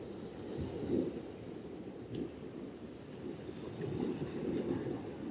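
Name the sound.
ocean waves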